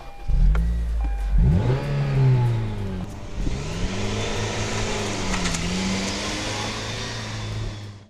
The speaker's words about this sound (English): Boy, this is not a happy car. In fact, it's kind of a buzzy car with a loud engine to drive around in.